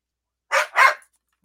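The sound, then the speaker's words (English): Two quick, sharp dog barks in close succession, fairly loud, with silence before and after. “Dog is giving his opinion too.”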